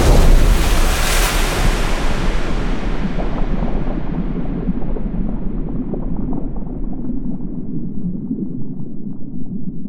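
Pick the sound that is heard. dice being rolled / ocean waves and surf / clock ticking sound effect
ocean waves and surf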